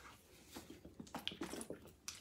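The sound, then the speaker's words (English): Someone drinking water, with a quick run of wet gulps and swallowing sounds at a quiet level, no talking. “Let me get a drink.”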